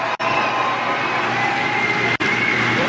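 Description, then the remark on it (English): A crowd claps as Hillary Clinton and Bernie Sanders come on stage, a dense, steady roar of applause that holds at an even loudness for about three seconds. It is broken twice by sudden brief dropouts to silence. “Applause right there.”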